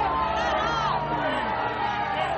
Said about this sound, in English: They booing him.